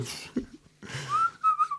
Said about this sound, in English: No, I started off that way and then I taught myself how to whistle properly.